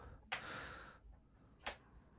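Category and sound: animal, pet snoring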